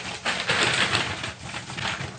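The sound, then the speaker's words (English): Paper being crinkled, a dry, irregular crackling that swells and fades in uneven bursts for about two seconds, with no voices. “You wrinkled your paper! Like this?”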